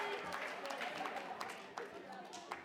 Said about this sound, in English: Who's had a test this week? Give me a big wave. Who reckon they passed that test? Let's give God a clap of praise right now for that. That's amazing.